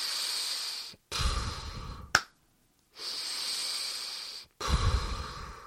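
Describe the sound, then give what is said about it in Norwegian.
Slow, deliberate breathing for moving in thin air at high altitude, taking one breath per step, combined with yoga: four long airy breaths in and out with short pauses between them, steady and controlled, and no talking. “Puster en gang, og så tar jeg skritt.”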